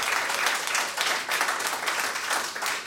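An audience breaks into steady applause, many hands clapping in a dense, continuous patter that stays fairly loud and even throughout, with no voices standing out.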